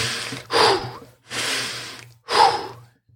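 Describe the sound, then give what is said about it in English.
Slow, deliberate breathing in through the nose and out through the mouth: two full cycles of a drawn-in breath followed by a longer, audible exhale, with no talking. “And then you just say, in through your nose, out through your mouth.”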